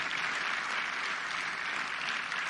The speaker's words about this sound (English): Come on, let's give our Boy Scouts another round of applause.